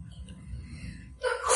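A single loud sneeze bursts out at the very end, preceded by a sharp intake of breath over a low, quiet background hum.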